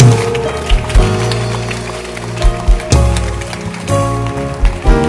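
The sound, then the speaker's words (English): An audience at a church service in Accra claps hands in a dense, continuous patter that stays loud throughout, with sustained musical tones droning underneath and a few heavier thumps breaking through. “Clap your hands now.”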